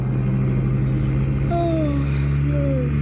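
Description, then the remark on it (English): A car engine drones steadily at full speed, following another car, with a loud, continuous low rumble, the tone shifting slightly as it drives on, with no voices present. “following his car at full speed.”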